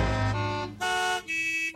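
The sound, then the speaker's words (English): Car horns from traffic honk in a string of long, loud blasts with short gaps between them, rich buzzing tones that shift pitch from one honk to the next, heard within a song. “That was so smart because you have the car horns.”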